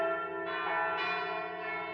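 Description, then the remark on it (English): A church bell, caught by a strong wind, rings out in overlapping, sustained tones, struck a few times at uneven intervals so each new clang swells over the fading hum of the last. “listening to the church bell clanging in the breeze”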